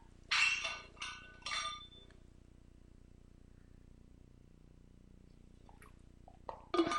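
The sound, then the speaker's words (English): Three sharp, bright glass clinks in quick succession, ringing briefly, followed by a long quiet pause and a few faint small knocks near the end as water is drunk. “I just have some water before we do that.”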